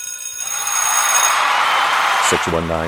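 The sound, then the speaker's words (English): A lunch bell rings loudly and continuously, a harsh metallic electric clang filling the whole stretch, with a brief voice breaking in right at the end. “The lunch bell is about over. It's going to ring.”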